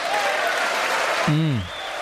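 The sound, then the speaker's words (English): A large audience applauds a line in a speech about the economy and unemployment, with dense, steady clapping throughout, and a single voice briefly rises over it near the end, like a shout or cheer from the crowd. “That is an actual good applause line.”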